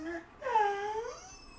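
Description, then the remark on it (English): A puppy whimpers twice: a short, high whine, then a longer, wavering cry that rises and falls in pitch before trailing off. It is fairly soft, and no one talks over it. “Oh, sheepy puppy.”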